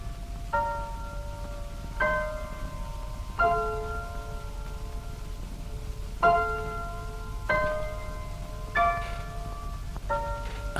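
Big Ben's clock tower bells chime a slow melodic sequence of about eight strikes, each ringing out with a long, shimmering decay over a low background rumble. No one speaks.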